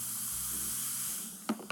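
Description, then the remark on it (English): Bowel prep laxative powder from a lemon-flavoured sachet, being mixed, fizzing in a glass of water makes a steady, soft hiss for over a second, followed by two quick clinks, with no voices. “And I'm just mixing it now. I don't know if you can hear the fizzing.”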